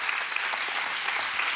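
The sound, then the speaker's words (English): A church audience breaks into steady applause for news of a donation check to Calvary Christian Academy, many hands clapping at once in a dense, even wash of sound that holds at a constant loudness, with no voices standing out. “We should clap for that.”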